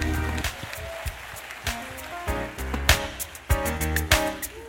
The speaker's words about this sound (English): Scripture says in Psalms 47, clap your hands, all ye people. Shout unto God with a voice of triumph. So can we do that right now? Come on, clap your hands and make some noise.